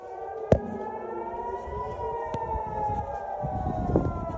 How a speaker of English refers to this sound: This is the air raid siren alert. Every ping that you hear is another air raid siren. Simply all of Israel, except for the north, right now is under active missile attacks.